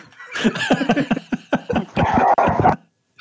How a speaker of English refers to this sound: The dogs are losing their minds in the background right now.